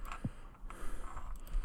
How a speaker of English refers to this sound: I'm not so good at typing.